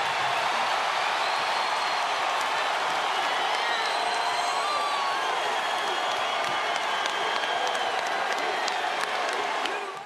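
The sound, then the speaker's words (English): A large crowd cheers and applauds continuously, a dense roar of clapping mixed with scattered whoops and shouts, loud and sustained for the whole stretch without pause. “I mean, you know they're applauding, but you know, it's not like changing the”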